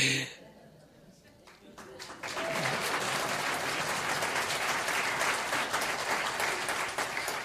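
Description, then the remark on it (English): An audience breaks into courtesy applause, starting faint and swelling after a couple of seconds into steady, moderate clapping that continues without stopping, with some murmuring voices mixed underneath. “That's called a courtesy clap.”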